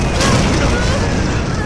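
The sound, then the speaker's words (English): A loud, sustained explosion with a deep, heavy rumble as a bridge collapses, falling into Fort Terminus, roaring continuously without pause or fade. “Saint above, the bridge, it's falling into Fort Terminus. Explosions can affect us.”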